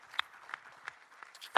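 Sparse, faint applause: about five separate hand claps spaced roughly a third of a second apart, sharp and bright, with no talking.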